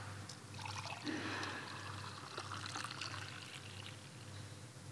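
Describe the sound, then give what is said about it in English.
Liquid is poured steadily into a communion cup during a communion service, a gentle splashing trickle lasting several seconds over a faint low hum, with no one speaking. “In the same way, Jesus took the cup and he gave thanks to God and Father for it in heaven, and then he poured it out.”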